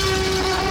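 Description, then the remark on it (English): A loud, sustained T-Rex roar movie sound effect, made from a lion and an alligator combined and slowed down, with a steady, deep, brassy tone held throughout the brief moment and no voices. “It was a combination of a lion and an alligator slowed down.”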